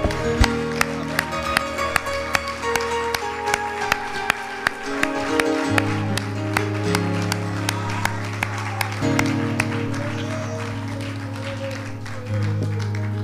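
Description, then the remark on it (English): A church audience claps steadily in rhythm over sustained, loud organ-like chords that shift pitch, the sharp claps continuing evenly throughout with a faint murmur of voices. “Can we give that hand clap a little bit longer there?”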